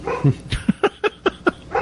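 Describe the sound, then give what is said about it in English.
A dog barks in a quick run of five or six sharp, evenly spaced barks, loud, with no talking over them. “I'm telling you, if you want to take this for a second, I'm going to quiet down the dog a second.”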